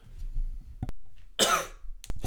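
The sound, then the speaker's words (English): A single sharp cough bursts out, preceded and followed by brief throat clicks and low rumble, with no one speaking. “I just muted my mic to cough, but I know everyone heard it”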